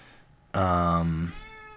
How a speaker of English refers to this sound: I have a cat. He often comes in here and makes a noise.